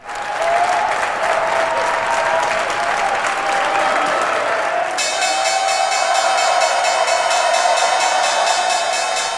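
Loud, steady applause fills the whole stretch at the New York Stock Exchange as shares in electric air taxi startup Joby Aviation begin trading; about halfway through a sustained, high-pitched ringing of the trading-floor bell joins in and keeps going beneath the clapping.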